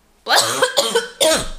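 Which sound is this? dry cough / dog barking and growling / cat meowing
dry cough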